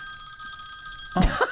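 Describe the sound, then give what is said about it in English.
A cell phone rings with a steady, high electronic tone that sustains for about a second before being cut off by a brief burst of louder noise. “Pat uses his cell phone now, y'all.”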